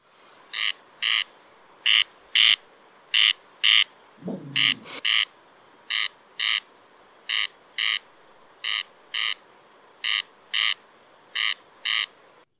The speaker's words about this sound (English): The judges' votes are in, and the answer is Corn Crake is the bird. Yeah!